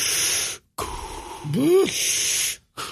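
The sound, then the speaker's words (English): A voice imitates heavy, airy breathing, acting out a waist-high brick wall that seems to breathe: a long breathy exhale, a brief pause, then a longer rasping breath with a short voiced rise-and-fall in the middle, and the start of another breath at the end. “Breathing.”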